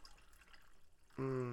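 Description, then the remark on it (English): Quiet, faint trickling gives way to Coke pouring steadily into a cup to top off a Wild Turkey and cola drink, a bright gurgling stream whose tone climbs as the cup fills. “All right, top that bitch off with some cola. Stir it up.”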